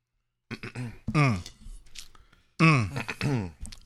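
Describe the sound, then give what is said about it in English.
A person clears their throat several times after eating spicy food, with rough, voiced grunts in short bursts separated by brief pauses. “I'm trying to clear my throat. That stuff was a little spicy going down.”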